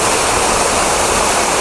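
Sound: waterfall rushing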